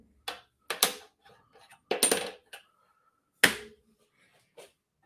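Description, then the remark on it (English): A small stainless steel washer drops and clinks several times against a hard surface, each sharp metallic tick ringing briefly, irregularly spaced, with no voices. “Maybe that's a stainless steel washer. It's not a metal washer.”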